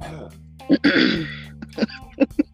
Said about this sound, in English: Let me clear my throat.